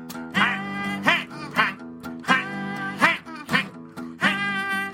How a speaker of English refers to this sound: Because the geese are taking over, the geese have run amok, the geese have learned to improvise. Check out that goosey sound going.